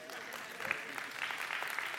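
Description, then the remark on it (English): An audience claps in a dense, steady patter of many hands, fairly soft overall, growing a little fuller partway through and continuing to the end without a clear break. “Y'all can clap.”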